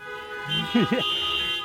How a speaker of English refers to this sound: You can honk too.